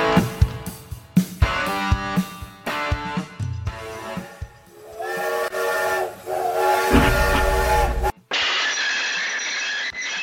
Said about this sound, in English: There it is again, still just about the sound of the Rowett train, just about still on the rails, joining me to consider the terminus that's looming in the distance now.